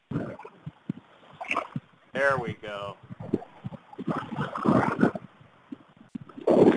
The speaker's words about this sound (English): But here's a little Zen moment, if everybody can hear it in the background. Can you guys hear the waves, you know, rushing in here a little bit? Yeah, it's pretty tough. Put the phone down right to the water